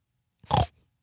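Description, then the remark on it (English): A single short, nasal grunting oink made by a human voice imitating a pig, loud, lasting about a quarter second with a brief rough tail. “Why did we say pigs oink? I guess they squeal. Like that. Yeah, those little like oinks.”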